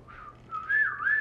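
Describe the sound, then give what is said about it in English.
A person whistles a short, wavering tune, the pitch sliding up and down in a few breathy phrases. The whistle is moderately loud, with no talking. “Here we go, for the whistle.”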